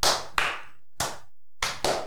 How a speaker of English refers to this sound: We're thinking a venue that can hold 100 people. And how cool would it be to get 100 people to do the slow clap that we do?